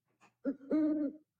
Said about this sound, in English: Oh, so are those owl sounds, Tony? Sound of owl at night.